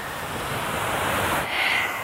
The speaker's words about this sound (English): And it's a really, really reflective scene. So I hope that if you need some ocean, you can have it for yourself today.